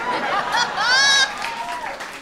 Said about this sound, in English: what are we booing exactly?